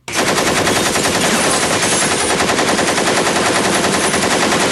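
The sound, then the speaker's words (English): A gunfire sound effect used for school shootings: sustained rapid machine-gun fire, a loud continuous stream of bursts that starts abruptly and rattles on without pause for nearly five seconds, with no voices. “That's the sound effect for it.”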